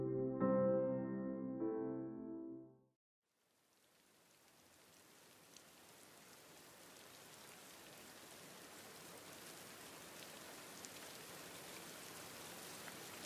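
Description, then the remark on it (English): A few seconds of soft tonal music give way to a short silence, then heavy rain falling on a town fades in and builds to a steady, dense hiss with pattering drops, no voices. “You are listening to Heavy Rain in Town, an ambient soundscape for sleep or to play for your next D&D session.”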